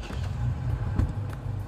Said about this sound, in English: As we listen to all the sounds of the parking lot at the bar, with a car starting, people in the background talking. You get it all, guys. This is what you're hearing.